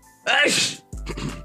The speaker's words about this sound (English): Excuse me. That's the first sneeze on the podcast. Bless me.